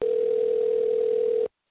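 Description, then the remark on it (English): A telephone ringback tone on an outgoing call, placed to leave a voicemail message: one steady, unbroken electronic hum at a constant pitch lasting about a second and a half, then cutting off abruptly into silence. No voices. “That phone doesn't have a voicemail. It came in black. It has rung the 8 a lot of times.”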